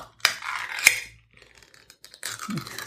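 A metal pull-tab can is pried open: two sharp clicks and pops followed by a scraping, tearing rasp of the lid peeling back, with a brief pause before more rough scraping.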